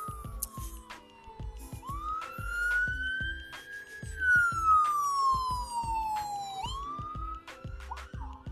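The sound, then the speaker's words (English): A loud wailing emergency siren sweeps up and down in pitch as it passes by outdoors, over low rumbling traffic and engine noise. “I'm outside, so now I have a siren that's about to come by.”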